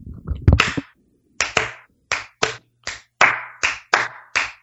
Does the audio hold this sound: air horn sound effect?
no